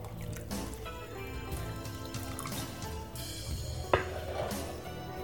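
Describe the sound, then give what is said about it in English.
Liquid pours steadily into a glass for several seconds, trickling and splashing, with a single sharp clink near the end. No one speaks. “Pour me one more and I'll tell you.”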